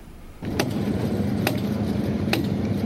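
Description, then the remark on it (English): Three sharp, ringing hammer blows as Indiana Governor Eric Holcomb hammers a ceremonial golden spike into a section of railroad track in Michigan City, marking the start of the South Shore Double Track project; each blow a crisp metallic clank, roughly one second apart, above a steady low rumble like an idling engine. “Governor Eric Holcomb hard at work as he hammers down a ceremonial golden spike into a section of railroad track in Michigan City this week, marking the beginning of what many are touting as a new era of economic prosperity for Northwest Indiana.”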